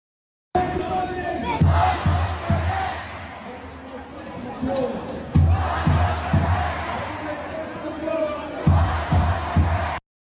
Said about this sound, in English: In Toronto, Canada, pro-Hamas crowds actually chanted for the decapitation of Israelis.